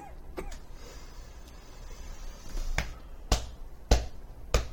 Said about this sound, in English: Actually, you're not supposed to. You're actually not supposed to pound the back of people who are actually coughing.